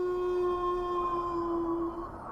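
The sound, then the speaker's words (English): A single long wolf howl holds one steady mid pitch with a thin overtone above it, then cuts off near the end, leaving a low rumbling background hiss. No one speaks. “I wouldn't be so sure, Alice says, just as a howl erupts from behind her.”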